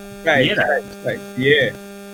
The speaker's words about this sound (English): Can you hear it? Someone's got echo. Hello? Yeah, it's gone. Oh, wow, that was weird.